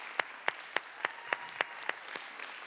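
Applause sounding as a steady, evenly spaced run of about nine sharp, crisp claps, moderately loud, with a faint wash of extra clapping beneath and no voices.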